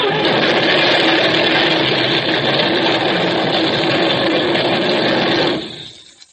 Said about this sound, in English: My truck! She's running away! She's loaded with TNT! She's going to hit an armored truck!